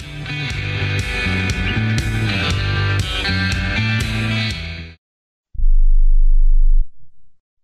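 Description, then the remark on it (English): A short music passage ends, and after a brief pause a single loud, low bell tone sounds for about a second and a half before cutting off abruptly. No one speaks. “Don't miss that bell.”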